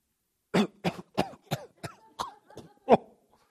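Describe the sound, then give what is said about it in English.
A rapid fit of about eight harsh coughs in a row, fairly loud, tapering slightly before one last forceful cough, with no talking. “Amazing how that cough comes on when you ask those questions.”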